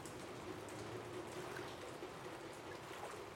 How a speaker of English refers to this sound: As rain pours down, the streets slowly begin to fill with water.